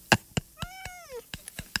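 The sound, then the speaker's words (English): A single drawn-out cat meow, clear, its pitch sliding downward at the end, surrounded by a few sharp clicks and taps before and after. “that sweet cat behind you will eat your face”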